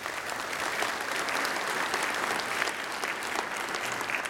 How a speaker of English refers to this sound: All right, give them a big round of applause, would you?